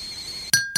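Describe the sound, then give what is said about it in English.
Two bright clinks of glasses or cups tapping together in a toast, fairly loud, each leaving a short ringing tone. A faint background hum comes before them, and no one speaks. “Now that brings us to tea time. Clink, clink. Clink, clink.”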